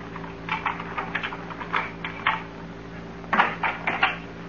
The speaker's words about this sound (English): I heard footsteps outside the house. Footsteps? Just listen.